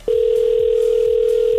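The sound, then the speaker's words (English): A steady, loud electronic telephone tone hums without a break, a radio show's outgoing call ringing out to a contest entrant, with no voices over it. “Now it is time to pick up the phone when we call.”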